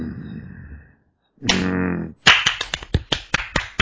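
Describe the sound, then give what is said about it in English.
A quick burst of roughly ten sharp, loud hand claps in an uneven rhythm, coming after a brief pause and a short sustained humming tone. “Yeah, that's some nice clap you got there.”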